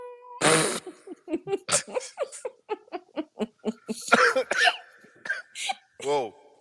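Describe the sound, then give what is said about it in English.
A loud, close burst of coughing right into the microphone, followed by a rapid string of short, choppy vocal bursts and a rising, squeaky noise at the end. “Coughing in the mic.”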